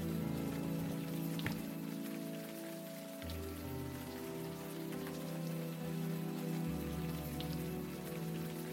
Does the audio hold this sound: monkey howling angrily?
no